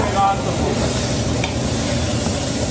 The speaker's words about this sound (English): The chef of this kitchen is managing three pots at once. Two of them contain fresh cuttlefish and need constant stirring, a tricky job.